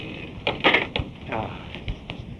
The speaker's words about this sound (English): Only you didn't know about this trap door, did you? Nobody but Scrawny knows about that.